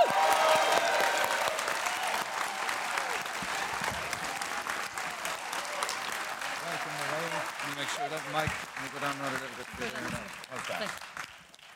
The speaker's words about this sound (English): We're going to give her an extra special welcome. And we're delighted to have her back. Will you give a huge round of applause